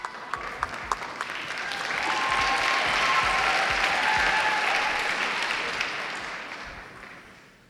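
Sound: audience applause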